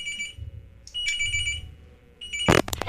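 An electronic phone ringtone trills in repeated high-pitched bursts, steady, followed by a sharp click at the end.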